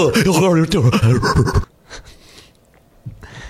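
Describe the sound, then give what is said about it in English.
A voice imitates the heavy, loud mouth breathing of a Knicks fan, with voiced panting gasps for over a second, then a few fainter breathy huffs trailing off. “Mouth breathing fan.”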